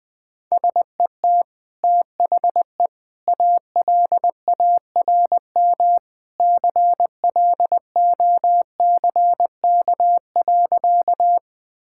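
Morse code practice of easy sentences sent at about 20 words per minute: a steady single-pitched tone keyed into short dots and longer dashes, grouped into letters and words with brief silent gaps, no voices.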